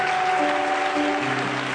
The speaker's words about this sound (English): Why don't you just give the Lord a good hand clap of praise this morning? Hallelujah. He is worthy.